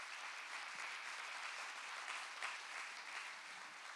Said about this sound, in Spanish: Démosle un aplauso al Señor por eso.